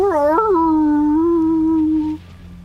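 A single drawn-out wolf howl, rising briefly at the start and then holding a steady, fairly loud tone for about two seconds before cutting off.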